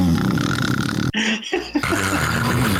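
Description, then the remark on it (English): A voice loudly imitates snoring: a long, rough, rumbling inhale, a brief gap, then another harsh snort-like rumble, exaggerated. “People still haven't gotten used to his snoring.”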